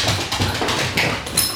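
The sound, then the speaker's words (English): A dog runs laps through a house: quick, irregular patter and thumps of paws over a steady, rushing noise, with no one speaking. “And my dog has decided to do laps through the house. That's the noise.”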